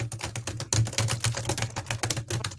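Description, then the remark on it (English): Rapid, steady clatter of keys on a computer keyboard, fairly loud, with dense irregular clicks filling the whole stretch and no voices. “What are you typing?”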